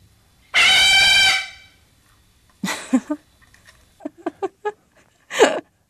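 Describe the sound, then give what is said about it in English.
A dog named Gideon lets out one loud, piercing, high-pitched scream lasting about a second, followed after a pause by several shorter, rougher yelps and clicking bursts. “The kids will interact with each other, and Gideon will scream as loud as she can over their heads.”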